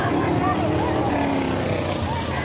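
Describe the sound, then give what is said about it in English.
A loud, continuous roar of race car engines, their pitch rising and falling as cars go by a driver who is out on the track, with indistinct voices mixed into the din. “This is the cars going by the driver. He's aggressively pointing. Oh, he hit him! Did you hear the engine?”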